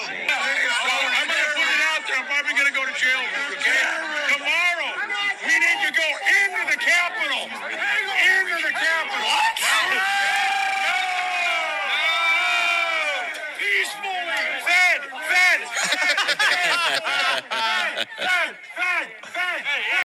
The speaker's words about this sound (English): If you don't know who he is, he's this tall, bald guy that on January 5th actually said something that made the crowd start chanting something.